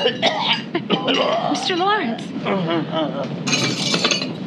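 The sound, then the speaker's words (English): A man coughs violently in harsh, repeated, loud fits, with strained, wheezing vocal sounds between bursts and a brief glassy clatter near the end. “Coughing his head off.”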